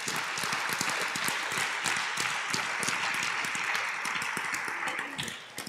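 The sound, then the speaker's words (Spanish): An audience breaks into sustained applause as a clap offering to the Lord, many hands clapping in a dense, steady wash that holds throughout and thins slightly at the very end, with no voices heard. “Now, let's give the Lord a clap offering.”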